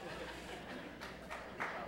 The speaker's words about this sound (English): Somebody's clapping for that?